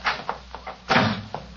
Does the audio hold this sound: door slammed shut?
yes